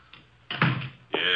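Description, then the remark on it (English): An unlocked door is opened as a visitor enters, with a click and a rattling scrape of the handle and hinge, then a second louder bump as it swings; no one speaks. “Come in, the door is unlocked.”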